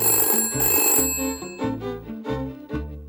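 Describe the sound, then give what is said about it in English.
A telephone bell rings loudly, its bright metallic trill repeating in quick pulsing bursts with no voices present. “Someone who is deaf or hard of hearing might even have a strobe warning light on their telephone to tell them when it's ringing.”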